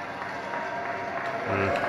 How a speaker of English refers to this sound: Obviously, the crowd went wild.